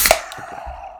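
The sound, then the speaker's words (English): Pumpkin beers cracked open at the same moment: a sharp burst of pop and hiss, then a steady fizzing hiss that trails off over about a second, with no voices. “Oh, that sounded legit.”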